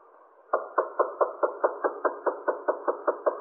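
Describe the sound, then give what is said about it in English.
A key rattles in a door lock, making a quick, steady series of about fifteen muffled clicks and taps, with no one talking. “Yeah, that's the key in the door, all right.”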